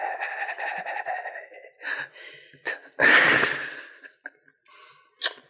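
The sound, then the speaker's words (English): A voice imitates an asthmatic child wheezing while trying to say "mate": a run of raspy breaths and gasps, with one loud, harsh exhale in the middle, then a few short, faint breathy sounds. Fairly loud. “Yeah, well, that's actually what it sounds like when an asthmatic child tries to say mate because they've been breathing in diesel.”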